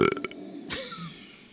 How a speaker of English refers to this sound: Are you done? I'm trying to make a Wookiee sound with burp. Yeah, no, I like that. I like that.